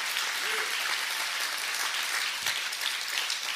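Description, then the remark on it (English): An audience bursts into sustained applause as a hand clap of praise to God, a dense, steady wash of many hands clapping at once, loud and even throughout with no voices standing out. “Give him the biggest hand clap of praise.”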